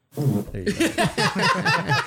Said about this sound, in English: There you go. Perfect. There's a nice fart.